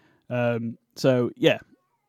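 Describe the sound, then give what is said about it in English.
A pet cat meows three times in quick succession in the background, one longer drawn-out call followed by two shorter ones, fairly clear with quiet pauses between. “my cat in the background. Meowing.”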